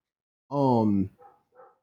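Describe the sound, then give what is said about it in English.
A dog lets out one loud, drawn-out bark that drops in pitch, followed by two softer, shorter yelps, with no talking around it. “You're not making the dog bark.”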